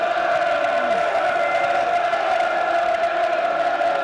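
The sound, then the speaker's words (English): A big football crowd roars and chants in a steady, sustained swell, trying to lift the Lions 51 minutes into a match against Blackburn, the massed voices holding a droning tone throughout, loud and continuous with no individual speech standing out. “Crowd trying to lift the Lions.”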